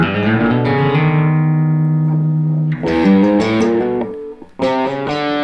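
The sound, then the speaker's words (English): Loud, heavily distorted guitar chords ring out and smear together in a thick, buzzing cascade, with the open D string played and fresh notes hammered on partway through, including onto the 6th fret of the A string, and again near the end. No one speaks. “Then you play the open D. Yeah, it's a big nasty cascade. Very nasty, smeary cascade.”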